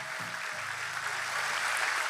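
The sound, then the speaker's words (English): An audience at True North claps for Jesus at a morning service, a dense wash of overlapping hand claps with no clear rhythm, over a low sustained musical tone, and the clapping swells slightly toward the end. “Come on, let's clap for Jesus.”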